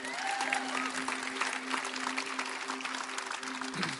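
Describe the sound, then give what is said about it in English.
A crowd of women applauds and cheers, dense, steady clapping filling the whole stretch with a few high voices whooping over it early on, fairly loud throughout. “And now the ladies around, go ahead, you can cheer if you're going to cheer.”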